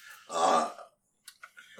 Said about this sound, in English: Oh, we got a spike there on the mic. Yeah, that was a water burp.